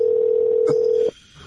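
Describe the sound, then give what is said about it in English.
A steady, loud telephone dial tone holds one low-mid pitch for about a second, broken briefly by a soft click, then cuts off abruptly into near silence. “Dialing for dollars.”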